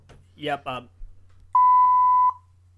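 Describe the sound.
A loud, steady censor bleep tone at a single pitch holds for nearly a second, cutting off a brief burst of speech just before it, with faint low hum underneath.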